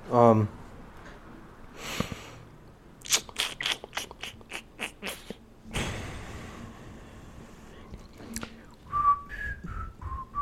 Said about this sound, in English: I'm trying to test the whistling thing on this.